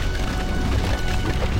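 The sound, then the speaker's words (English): A loud earthquake attack sound effect: a steady, heavy low rumble mixed with crackling, splintering crunches that churn on without a break for under two seconds, with no voices. “That was an earthquake attack.”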